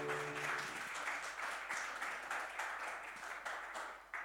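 A crowd applauds steadily to welcome a speaker who is coming to bring the message, many hands clapping in a dense, continuous patter that holds at a fairly even loudness, with a brief voice fading out at the very start.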